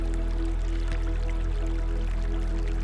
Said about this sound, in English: The sunlight softly sparkles on the water's surface, and the gentle sounds of the flowing water fills the air.